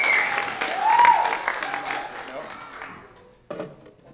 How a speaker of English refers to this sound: Oh, round of applause. Better than that.